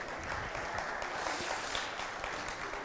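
A crowd claps steadily and continuously, a dense wash of many hands filling the room at moderate volume for the whole stretch, with no voices standing out.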